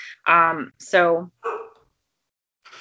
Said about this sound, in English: Sorry, guys. That's my dogs barking in the background.